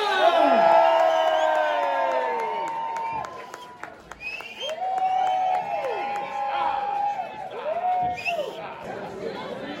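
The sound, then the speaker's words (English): A crowd cheers and applauds loudly for the parade of a Best Fake Creative Beard contest, with whoops and high shouted voices rising and falling over steady clapping for the full stretch, briefly dipping before swelling again. “So one of the biggest cheers, let's hear it for the parade for Best Fake Creative Beard.”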